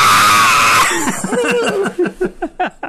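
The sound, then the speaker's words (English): A loud, harsh, strained scream, voiced as a robot character's cry after a blaster shot through a wall, then breaks into a rapid series of choppy, pulsing yelps that fade out, with no other talking. “And Mectroprex screams.”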